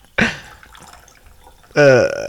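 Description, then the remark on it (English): Liquid is poured into a regular drinking glass: a short splashing burst, a quiet pause, then a louder gurgling stretch with a shifting, hollow ring as the glass fills. “All right, I'm pouring more into your regular glass just because, though.”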